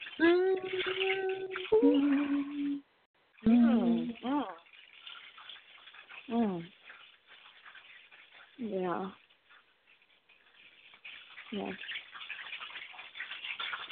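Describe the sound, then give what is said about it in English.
Chicken sizzling as it cooks, a steady crackling hiss running the whole time, with a person's voice talking in short bursts over it. “Yeah, sizzling like so much I hear going it. On right now. I got a whole bunch of things sizzling.”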